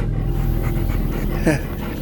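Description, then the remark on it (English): Steady panting from dogs that are sitting and lying down runs throughout, with a single brief, high whimper breaking through near the end. “The dogs, they're sitting, lying down.”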